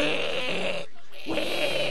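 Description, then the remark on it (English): A person imitates a pig squeal: two loud, harsh, nasal squealing bursts with a brief pause between them, and no other talking. “Even I just did squeal.”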